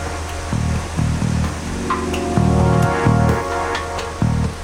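A steady rain shower from a storm hisses continuously, with occasional sharper drips, heard from a balcony near the Maas river. A low, intermittent droning hum pulses beneath it, and no one speaks.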